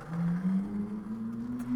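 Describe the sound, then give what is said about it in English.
A red Ferrari sports car engine drones steadily as it drives past in Los Angeles, its pitch climbing smoothly as it accelerates, fairly loud and continuous throughout with no talking. “Dang, look at the Ferrari.”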